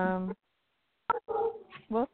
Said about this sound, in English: I hear the dog. The dog's letting me know. Yeah, they're going still crazy.